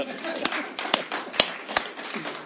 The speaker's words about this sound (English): I pray, jump your hands together for the glory of God. Clap your hands for God.